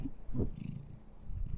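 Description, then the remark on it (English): A pet cat named Cream Puff, a female, purrs on the couch in a low, steady rumble, fairly soft, with a brief stronger swell early on. No one speaks over it. “Her purring may be coming through.”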